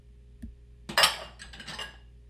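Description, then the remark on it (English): Dishes and cutlery clink and clatter during washing up: a soft tap, then a louder burst of rattling metal and crockery, followed by a few lighter clinks. No one speaks. “We can do the dishes later.”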